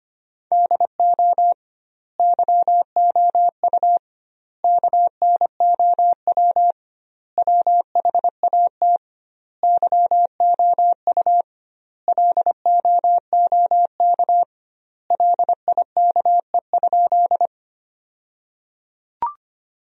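Morse code sent at 25 words per minute with double word spacing, spelling sentences built from the top 100 words: a single steady, mid-pitched beep keyed in quick dots and dashes, grouped into short bursts separated by brief pauses, with no voices.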